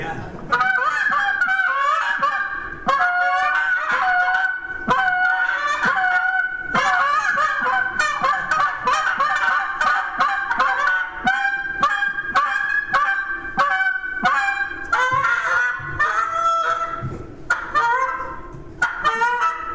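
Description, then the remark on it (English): A goose call blown continuously to mimic a whole flock, with loud, overlapping honks and clucks in rapid, irregular bursts for about twenty seconds, dense. “Come in here, sound like a flock.”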